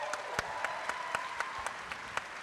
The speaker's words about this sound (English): Clap it up for him.